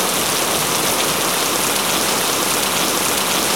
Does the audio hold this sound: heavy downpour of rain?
yes